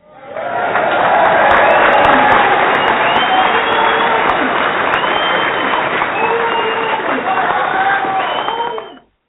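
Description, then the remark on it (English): An audience applauds steadily for about nine seconds, a dense, loud wash of clapping with cheering voices mixed in, before it cuts off abruptly. “We want to give a one-time round of applause”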